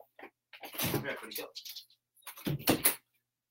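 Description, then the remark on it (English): A door is opened to let a dog out, with a couple of bursts of handling and shuffling noise, a short pause, then another clatter as it moves again. “I had to let my dog out.”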